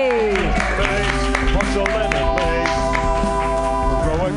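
An audience at a comedy show applauds steadily as the second comedian of the night is introduced, the clapping mixed under loud, sustained music with bright held tones and a regular beat.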